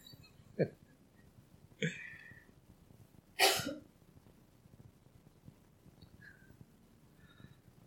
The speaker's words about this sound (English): I've got a plague of coughing going on this evening.